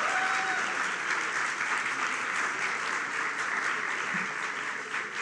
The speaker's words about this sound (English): Please welcome with a loud, loud, loud round of applause, Mukesh Chhabra, Indian film director.